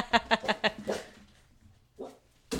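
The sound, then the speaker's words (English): A dog let outside barks at neighbors doing yard work along the fence line, in a quick burst of four or five sharp barks, falls quiet briefly, then lets out a couple more, moderately loud. “let our dog outside before he explodes with barks. You might hear him.”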